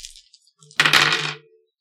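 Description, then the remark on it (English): Dice rolled in a tabletop game tumble and clatter onto a hard surface, coming up two fives, in one short, bright burst of rattling clicks lasting about half a second, with a few faint taps just before. “My dice are really good today.”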